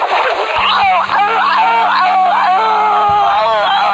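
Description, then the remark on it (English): A woman screams and wails loudly as she falls off while smashing grapes in Napa. Her cries are a string of strained, high-pitched sounds that waver up and down in pitch, continuous for several seconds, with a low steady hum underneath. “I forget the one where the lady's smashing grapes in Napa and she falls off and you hear her just, forget what it's called.”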